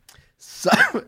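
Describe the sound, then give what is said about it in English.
A single throaty cough bursts out with a breathy rush and a rough, voiced tail, standing alone with no talking around it. “See, you're coughing because you know I'm telling the truth.”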